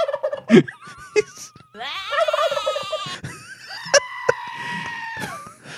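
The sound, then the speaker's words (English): A toy plays a recorded turkey gobble, a rapid warbling call that sounds slightly tinny, with a few clicks before it and a longer, steadier bleating tone after. “We got to get a picture of a turkey on this thing.”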